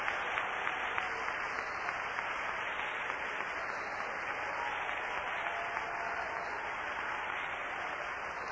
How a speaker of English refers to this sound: Hey man, let's all give the Lord a hand clap of praise.